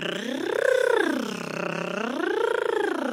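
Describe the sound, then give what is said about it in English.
A steady, buzzy tongue trill, done as a vocal exercise going up and down to explore the voice's range, glides up in pitch and back down, then rises and falls again, two smooth swooping arcs performed alone with no talking. “You can do the same with a tongue trill, like an R in some languages.”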